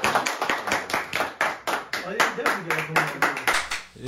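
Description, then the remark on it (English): A single person claps steadily, roughly twice per second, sharp hand claps forming an even rhythm, with voices talking faintly underneath. “Y'all was the only person clapping.”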